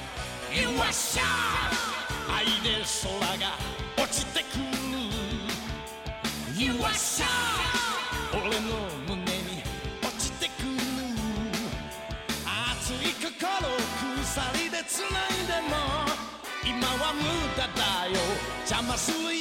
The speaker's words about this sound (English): that is the opening to Fist of the North Star